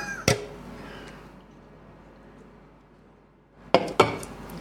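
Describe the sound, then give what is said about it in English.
Glasses clink together in a toast: one bright, ringing clink, a quiet pause, then two more sharp clinks close together near the end. There is no talking. “Speaking of which, cheers.”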